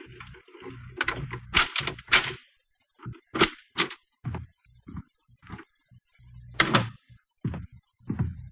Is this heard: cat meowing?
no